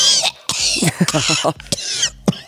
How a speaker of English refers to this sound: You know, that's a real cough.